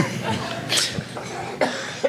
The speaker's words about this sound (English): Sorry, I had to cough before saying, let the games begin!